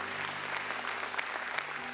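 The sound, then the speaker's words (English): An audience at Liberty Church claps steadily in a sustained round of applause, a dense wash of many hands at an even, moderate level with a faint murmur underneath. “Liberty Church, can we give them a round of applause?”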